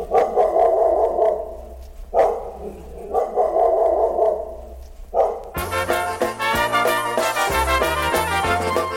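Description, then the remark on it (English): A dog named Lucky, blind in one eye and limping from being hit by a truck, barks in a few loud, drawn-out bursts separated by short pauses, then a band's music abruptly starts and carries on to the end. “And the description given by the owner, Earl Pickle, says the dog limps from being hit by a truck.”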